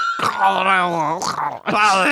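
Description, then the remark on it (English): A person imitates an ambulance siren with their voice, making two drawn-out wailing tones that slide up and down in pitch, fairly loud, with a brief break between them. “An ambulance.”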